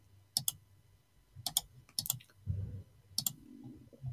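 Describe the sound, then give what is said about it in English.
Rapid, frantic clicking on a computer by a frustrated host trying to get something to work, sharp, arriving in quick double and triple bursts separated by short pauses, with a faint low hum underneath. “I'm just like, all you can hear is just the frantic clicking of a frustrated teacher's talk radio host.”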